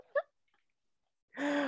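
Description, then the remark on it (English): One short, sharp hiccup, then about a second of quiet before a louder, sustained vocal sound starts. “I laugh too hard. I hiccup.”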